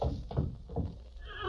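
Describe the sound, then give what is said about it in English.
A horse named Silver neighs with a shrill, wavering whinny near the end, preceded by a few heavy hoof thuds on hard ground, fairly loud, with no talking. “That horse knows that something was lurking in the canyon.”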